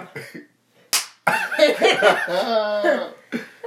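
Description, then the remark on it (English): A single sharp, loud face slap, recalling Will Smith slapping Chris Rock at the Oscars, cracks out after a brief pause, then a drawn-out, exaggerated vocal reaction follows, with short voiced sounds before it. “Will Smith slapped it out of Chris Rock.”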